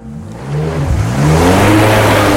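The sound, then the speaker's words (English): The engine of a 2VX5 amphibious hybrid car revs loudly, its droning pitch climbing and swelling over a couple of seconds, with no voices. “There's like aquatic cars.”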